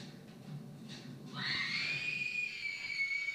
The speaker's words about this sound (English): Hell yeah. She's got a good scream.